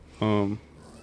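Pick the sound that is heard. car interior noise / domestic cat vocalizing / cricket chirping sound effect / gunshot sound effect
domestic cat vocalizing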